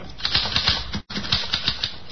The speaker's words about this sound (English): Here's a typewriter. Your secretary uses one. Perhaps your son or daughter write their school essays on a machine like this. This one is used to write a letter.